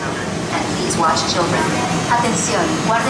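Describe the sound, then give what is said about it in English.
A moving Disneyland Railroad train rumbles and hisses steadily throughout, a continuous mechanical roar with a voice speaking intermittently over the top. “To those of you joining us here, welcome aboard the Disneyland Railroad. Please remain seated while the train is moving, keeping your hands and arms inside the car.”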